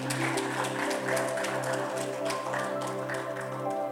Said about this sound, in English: Give the Lord a mighty clap of offering.